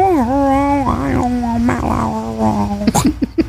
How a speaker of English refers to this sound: do you want to say anything to Catherine? And she's like, meow, meow, meow, meow.